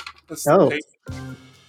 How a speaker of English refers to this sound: I've just been handed a slip of paper, as you can hear.